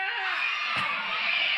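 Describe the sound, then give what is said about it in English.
A crowd of children at a Christmas morning church service screams loudly and steadily when asked if there are any kids present, a sustained high-pitched roar of many voices that holds at full volume for the whole moment, with one brief thump partway through. “Let me say that one more time, or ask that one more time, and you can scream, okay? Are there any kids in here?”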